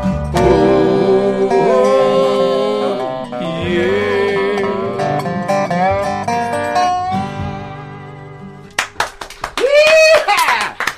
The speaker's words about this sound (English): Oh, man, you can feel the people out there clapping along